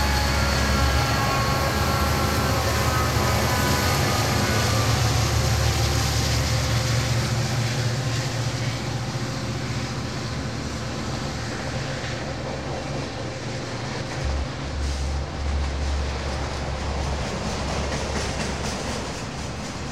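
A train rolls steadily along the rails, a loud, continuous rumble and rattle with a deep low drone from start to finish with no voices.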